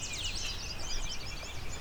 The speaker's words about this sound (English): As you can hear, it's a lot of sweeter than sweet songs. All yellow warblers.